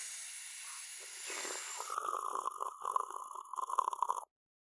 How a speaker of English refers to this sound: All right, bong loaded. Human ladies first. You know what the hell? Sure, let me at it. Please, use my lighter. I got this baby from Sid Vicious. Bong bubbling.